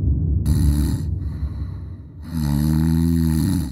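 Two long, deep snores follow one another, low and rumbling, the second with a steadier droning tone. Both are loud and there is no talking.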